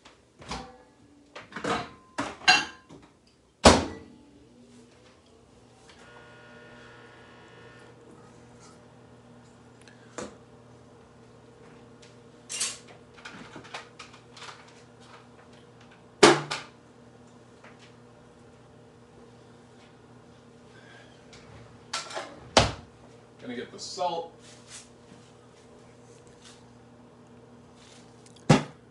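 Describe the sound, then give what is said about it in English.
A microwave oven heats some butter, running with a steady low electrical hum throughout, broken by several sharp clicks and knocks like a door and buttons, with no talking. “I'm gonna microwave that a bit.”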